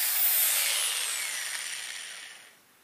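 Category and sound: tool, power drill drilling holes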